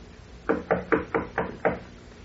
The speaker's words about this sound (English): Ah, here is her suite. I will knock.